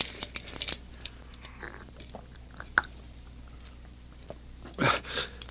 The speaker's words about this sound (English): Here, give him a sip of water from the canteen.